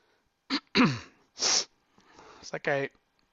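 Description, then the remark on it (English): Several short nasal bursts, wet sniffs and snorts from a stuffy nose with sinus problems come in quick succession, mixed with a few brief voiced throaty noises and breaths. “Went to the shop today and I got the sniffles.”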